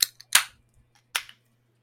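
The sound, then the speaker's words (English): Two sharp snaps of cans of New England style double IPA beer at 8% alcohol cracking open, each followed by a short hiss of fizz, about a second apart, with a couple of faint clicks between them. “It's been a while since we've cracked, but 3, 2, 1, crack.”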